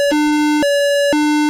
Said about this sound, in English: So there's my obnoxiously sounding alarms